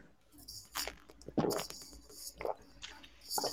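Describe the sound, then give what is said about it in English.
Someone takes a sip of water, with soft wet mouth noises and a few brief swallowing clicks and gulps. “I need to have a drink of water.”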